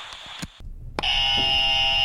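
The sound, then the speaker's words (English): A loud game show buzzer blares, a harsh, steady electronic tone that holds for about a second after a few brief clicks and a short moment of silence; it is the buzzer used on the show No Church Answers when a church answer is given. “And that's the buzzer you hear if you give a church answer.”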